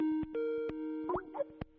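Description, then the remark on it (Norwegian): A steady electronic telephone tone hums through the line, overlaid with a few sharp clicks and brief warbling blips, like a call connecting, on a phone call to a manager at Ullevål hospital. No one speaks. “så nå skal jeg prøve å ringe.”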